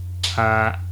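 A refrigerator's steady low hum runs throughout, broken by a sharp crack and then a brief, louder buzzing drone that fades back into the hum.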